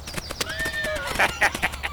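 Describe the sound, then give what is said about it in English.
A horse whinnies with a high, wavering neigh that slides downward, then hooves clop in a steady rhythm of four or five fairly loud beats on a narrow road. “I'm surprised you haven't fallen to your death yet, that crazy horse of yours.”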